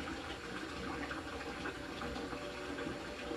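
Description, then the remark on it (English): Water runs or pours steadily with a continuous, even splashing rush that neither swells nor fades, heard alone at a moderate level. “This water, in the realm of Gaia, has monumental healing properties.”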